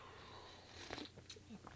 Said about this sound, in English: One more sip of coffee, hold on.